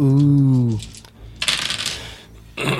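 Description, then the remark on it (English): Dice clatter and roll across a hard tabletop in a brief rattling burst lasting under a second, following a drawn-out vocal sound, with another noise starting right at the end. “3 black dice penalty.”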